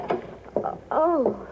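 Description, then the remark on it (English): A door creaks open in three squeaky, drawn-out groans as its doorknob turns, the last one longest with a wavering pitch, moderately loud with no voices. “The doorknob, it's turning.”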